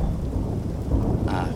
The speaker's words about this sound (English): It's the water that's the trouble, you know. The water is the solution. See, the water, it gets trapped in the pipe. And then the steam, the incoming steam, tries to force its way past that water, and that trapped water bangs around on the inside of